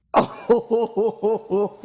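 A voice imitating a cough: one sharp, breathy burst followed by a quick, even series of about six voiced hacking pulses, close up and fairly loud, with no other talk.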